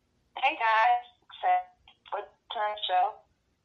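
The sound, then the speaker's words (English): A distorted, choppy voice breaks up over a poor phone line, its speech reduced to a few short garbled bursts with gaps between them and no clear words coming through. “She's joining us via phone, guys. So can you say that one more time? I think it might be your service maybe, or yeah.”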